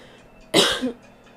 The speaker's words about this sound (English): I'm sorry to be coughing, y'all.